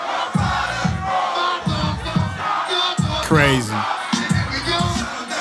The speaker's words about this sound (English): Yeah, that crowd must have been crazy. It was insane.